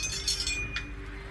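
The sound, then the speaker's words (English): Dice are rolled for initiative, clattering across a hard surface in a few quick, bright clicks, fading within a second over a low steady hum, with no voices. “All right, I'm going to roll my initiative.”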